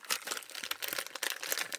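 A packet of Kingston biscuits, crunchy coconut oaty biscuits with a cream filling, is opened with dense, continuous plastic crinkling, a bright crackly rustle that rises and falls in bursts for about two seconds with no voices.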